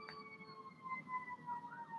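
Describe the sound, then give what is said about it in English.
A fire truck siren sounds throughout as the truck passes from left to right, heading to the highway: a sustained high wailing tone with a slight wavering pitch, steady and unbroken over a low background rumble, with no one talking. “Some kind of emergency vehicle. It's a fire truck.”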